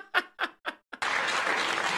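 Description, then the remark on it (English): Three short, loud whoops from a single audience member ring out in quick succession after a joke about Crystal Pepsi, then a whole crowd erupts into sustained applause and cheering. “You got the woo guy on Crystal Pepsi.”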